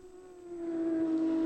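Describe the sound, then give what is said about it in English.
The flat-six engines of 19 GT3 Cup Challenge USA race cars drone together at the race start at Road America in a sustained, buzzing roar, the pitch holding steady and edging up slightly as the sound swells louder, with no voices. “Beautiful sight, beautiful sound, and, well, isn't multiple flat six just the best way to wake up in the morning?”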